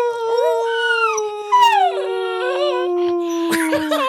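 animal, dog howling

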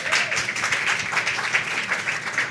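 crowd, audience round of applause

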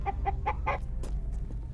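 bird, bird clucking

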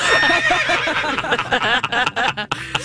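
animal, horse neighing

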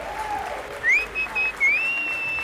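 crowd, crowd cheering and applauding

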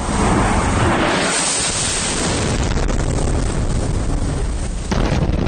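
impact, missile strike explosion

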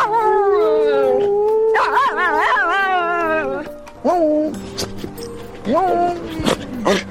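animal, dog howling

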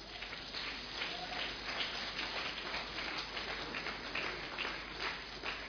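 crowd, audience clapping hands

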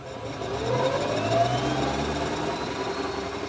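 vehicle, car engine running

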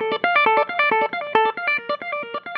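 sound effect, electric guitar playing

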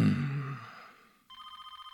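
signal or alarm, office telephone ringing

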